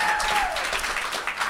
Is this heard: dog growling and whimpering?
no